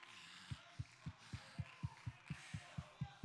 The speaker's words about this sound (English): Oh, come on and clap your hands unto the Lord.